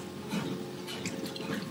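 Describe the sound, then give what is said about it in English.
Someone drinks water from a bottle, with soft wet sloshing and gulping sounds over a couple of seconds and no talking. “Let's get some water into me.”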